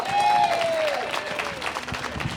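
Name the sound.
audience clapping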